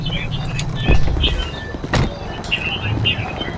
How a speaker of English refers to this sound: Oh, they're sliding doors. They're not push doors.